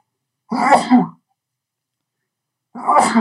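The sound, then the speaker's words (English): Two loud sneezes, one after the other with a pause of about a second and a half between them. Each is a sharp burst, and there is silence around them. “Sneezing.”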